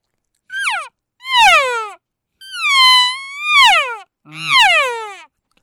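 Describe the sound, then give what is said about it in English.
A voice imitates elk cow mews as a relocation cow call used when elk hunting on public ground: about five whiny, nasal calls that rise and then slide downward in pitch, loud and alone with short pauses between them. “Just those cow mews, right?”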